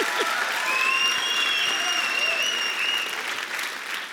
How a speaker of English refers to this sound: And maybe if we, come on, we can do that. If you're gonna clap, you gotta be committed, okay?